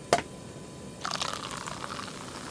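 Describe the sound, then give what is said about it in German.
A brief sharp clink, then after a pause a steady fizzy splash of champagne pouring into a glass, bubbly and hissing for a couple of seconds, with no voices. “Yes, a glass of champagne, bitte.”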